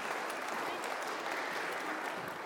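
A crowd of people applauds a child who has been up at the front, a dense wash of clapping that stays even and sustained from start to finish without any break or voice standing out.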